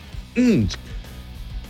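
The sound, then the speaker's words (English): A single sneeze from a radio host during an on-air broadcast: a short voiced intake rising and falling in pitch, then a sharp, noisy burst, loud against a quiet background with faint murmuring around it. “Yeah, I had to sneeze there.”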